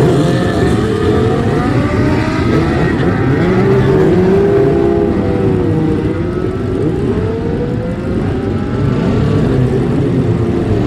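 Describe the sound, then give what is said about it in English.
Loud, continuous engine roar from several classic superbike racing motorcycles, with rising and falling pitch as they rev hard and pull away together at the start of a race, dense throughout with no talking. “Take the noise of these classic superbikes away.”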